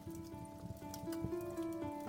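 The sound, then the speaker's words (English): Soft, steady rain falls on a sail in a continuous pattering hiss, with a faint low tonal hum running underneath and no voices. “I started pondering aloud as the outermost edges of the sail went limp in the whispering rain.”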